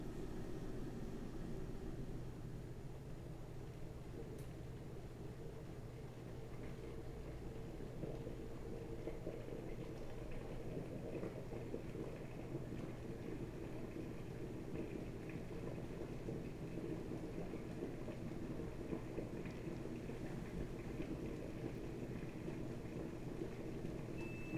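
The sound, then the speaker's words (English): An electric kettle roars steadily as it comes to the boil, heating water for a French press, a continuous rumbling, hissing noise that holds at a constant level throughout, with no voices. “The kettle has boiled.”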